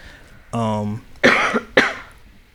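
A short voiced throaty sound, then two harsh, close-up coughs in quick succession, each a sudden loud burst that fades quickly, with no talking.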